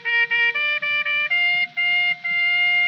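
A toy trumpet, a Christmas gift for a child, blown in a run of bright, reedy notes, short toots stepping upward and then longer held blasts, loud with no talking.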